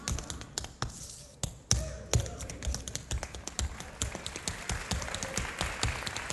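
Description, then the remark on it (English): Rhythmic tapping of a slide dance step, learned in Brasstown, North Carolina, on a hard floor: quick irregular clicks and scuffs with a sliding shuffle, fairly loud, with faint background murmur. “A rather saucy slide, too, in Brasstown, North Carolina.”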